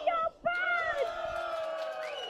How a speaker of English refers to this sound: You hear that, Marissa? They're going wild. In Japanese.